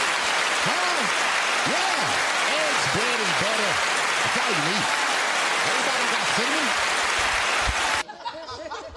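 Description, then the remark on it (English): An audience claps loudly and steadily for about eight seconds, with whoops and laughter mixed into the dense applause, before it cuts off abruptly. “Clap for her, everybody.”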